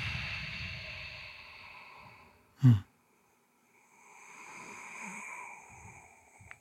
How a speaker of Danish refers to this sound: Det kan være nogle meget, meget simple ting, bare som at prøve at trække vejret helt vildt dybt ind. Og kan mærke, at min brystkasse udvider sig, min mave udvider sig, og prøv at holde det lidt, og så prøv at puste ud.